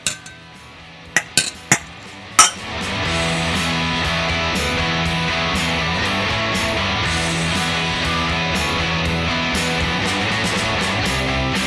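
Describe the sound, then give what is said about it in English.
A few sharp glassy clinks of glasses raised in a toast ring out in quick succession near the start, then give way to steady background music that continues to the end. “We're gonna raise a glass here.”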